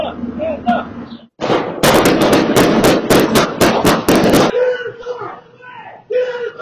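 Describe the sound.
A rapid burst of about a dozen loud, sharp gunshots rings out over about three seconds in an apartment complex during a shootout between L.A. County Sheriff's deputies and a kidnapping suspect in a parking lot, followed by voices crying out and talking.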